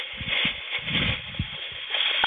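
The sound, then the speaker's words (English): Water sloshing and gurgling, a continuous wet churning with irregular low splashy pulses, fairly steady in loudness with no voices. “You hear that water? That's water. Real water.”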